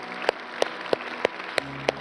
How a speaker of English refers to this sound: All right, let's give God a round of applause today. Praise God.